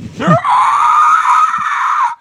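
A loud scream blasts right into the microphone, rising from a short vocal onset into a sustained, harsh shriek that holds for about two seconds before cutting off abruptly.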